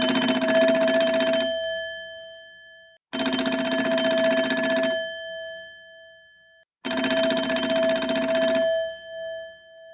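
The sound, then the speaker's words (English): A telephone rings three times in a steady, evenly spaced pattern as a call to Dr. Phil is dialed, each loud metallic trill lasting about two seconds before a brief pause, with no voices present. “So let's dial him in and see if we can get him on the other end of the phone and have a bit of a chat to him about the coronavirus and what he thinks of the whole thing.”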